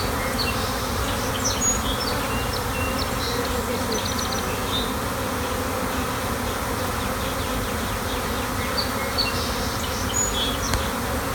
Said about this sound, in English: I just want you to listen for a second or a few seconds, maybe 10 seconds, of what the bees sounded like when we walked into a section of our bush just the other day.